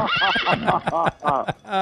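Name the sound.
horse neighing sound effect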